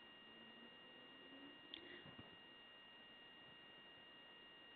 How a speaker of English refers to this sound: I can hear something, but I'm not sure what it is. There's like a... it's a white noise sound.